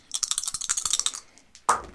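Dice, rolled for a dexterity intelligence check, clatter across a table in a quick burst of small hard clicks lasting about a second, then after a short pause one louder knock lands.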